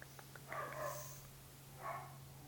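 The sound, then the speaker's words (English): A dog barks twice, the first bark longer and the second shorter a moment later, fairly faint over a steady low electrical hum, with no one talking. “The dog doesn't think so.”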